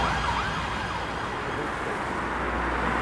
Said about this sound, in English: You see your ambulance and police up and down. About 10, 20 times a day.